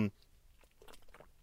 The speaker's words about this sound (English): Sorry, I had to take a sip of water here.